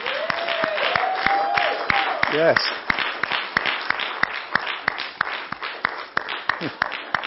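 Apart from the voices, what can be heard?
audience clapping and cheering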